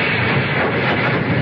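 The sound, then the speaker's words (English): A passenger train rumbles steadily as it arrives at a station, a dense, even roar of wheels and carriages with no voices over it, holding at a constant loudness throughout. “She came by train instead of driving.”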